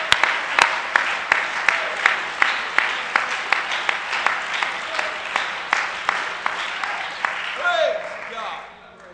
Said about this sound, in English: Let's give him a hand clap this morning.